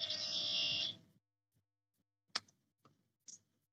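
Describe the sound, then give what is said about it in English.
A loud electric front door buzzer sounds for about a second with a harsh, steady drone, then cuts off, followed by a few faint scattered clicks and knocks. “That was my front door buzzer.”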